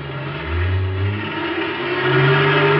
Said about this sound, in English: We still had about 100 yards to go when the truck roared up and started pulling itself loose from the wrecked car.